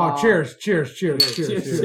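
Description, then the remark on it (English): A single bright, ringing clink of margarita glasses touching in a Cinco de Mayo toast, short, partly buried under overlapping voices chattering the whole time. “Cheers. Cheers to you guys. Margaritas.”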